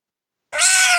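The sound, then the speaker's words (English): After a moment of silence, a cat lets out one loud, drawn-out meow, sustained to the end, with no talking. “Cat noise.”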